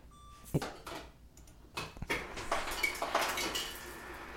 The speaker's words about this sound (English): Oh, okay. That's his ice machine and his fancy space age fridge. He's getting some ice.